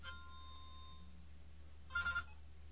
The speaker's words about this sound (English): Oh, hold on a second. I got a call. Who is it?